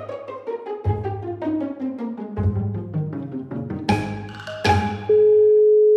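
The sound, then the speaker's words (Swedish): A quick tinkling melodic run, then a steady, continuous electronic phone tone at the end, as an outgoing call connects. No voices are heard. “Så att jag tycker att vi ringer upp och så ser vi hur allt går helt enkelt.”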